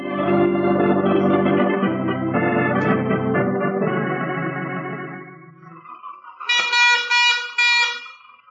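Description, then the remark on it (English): The horn of an early motor car driving off blares in long, droning honks, then switches to a series of higher, sharper toots, loud, with a faint motor rumble underneath. “I never realized the utter imbecility of barnyard fowl until I started to drive a car.”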